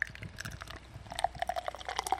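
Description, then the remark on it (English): Beer pours into a pint glass, a steady splashing stream turning into bubbly, gurgling fizz as the glass fills. Fairly quiet, with no talking. “I've got the sullied pint glass here. All right. Let me pour yours first. Let's see if that's audible on the microphone.”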